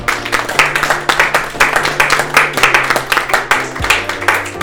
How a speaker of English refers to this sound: Okay, that's great. Thank you very much. Really interesting. Yep. So a round of applause, I think.